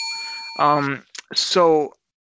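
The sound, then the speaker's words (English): A bell rings with a steady, clear tone of several pure pitches held for nearly a second. Two short voiced, wordless vocal sounds follow, partly overlapping the ringing. “Delayed bell.”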